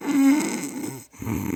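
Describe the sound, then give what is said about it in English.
A person makes a loud, throaty snoring noise imitating the snoring of their sleeping dogs, a rattling drawn-out snore, then a brief pause and another rough, gravelly snore. “Why are you snoring? Because that's what I hear behind me with my dogs.”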